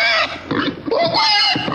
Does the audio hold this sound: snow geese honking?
no